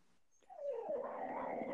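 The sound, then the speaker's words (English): A dog whimpers and growls, a short wavering whine that rises out of quiet and sustains with a rough, tonal edge for about a second and a half. “My dog doesn't like that title.”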